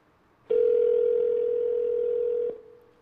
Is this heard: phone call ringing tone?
yes